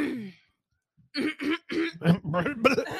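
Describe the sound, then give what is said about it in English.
A fairly loud run of about five quick coughs and throat-clearing bursts in a choppy rhythm, following a brief trailing voice and a short pause. “Need a cough button for you.”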